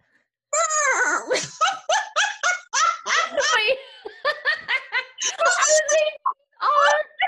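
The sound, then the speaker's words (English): A person loudly imitates an elephant trumpeting in answer to a quiz question, a series of shrill, wavering voiced blasts broken into choppy bursts that dissolve into giggly laughter. “What sound does an elephant make?”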